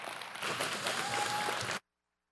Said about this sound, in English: So having said all that, how about a big round of applause for our worship pastor,